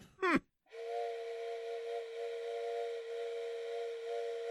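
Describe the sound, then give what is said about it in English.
A quick rising chirp, then a long, steady whistle blown by a person, holding one bright, even tone for nearly four seconds without a break. No one speaks. “Blow the whistle”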